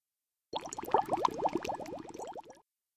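Water boiling in a pot, a dense, rapid burble of bubbles and pops lasting about two seconds, fairly loud, then cutting off abruptly. No one speaks.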